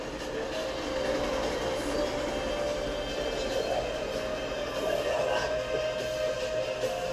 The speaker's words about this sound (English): Oh, people, sorry, train passing by.